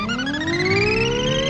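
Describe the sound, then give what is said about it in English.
A smooth, futuristic whirring hum like the flying cars from The Jetsons, made by a half-man, half-Segway character told to go faster, its bright, tonal whine sliding steadily upward in pitch as it speeds up, loud and continuous with no talking. “Why does this sound like the cars from the Jetsons?”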